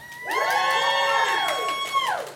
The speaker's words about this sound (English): Some of y'all ain't free. I can tell how free you are by how loud you cheer.